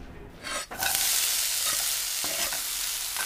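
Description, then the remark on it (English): Bacon and mussels sizzle in a pan as beer-steamed mussels with bacon are cooked at home: a loud, steady hiss of frying that starts abruptly after a short quieter moment, dotted with small crackles and pops, with no voices. “Make a little beer steamed mussels with the bacon.”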